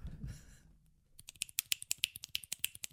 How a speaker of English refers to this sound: Dude, the tapping, clicking, snapping, anything hands and fingers related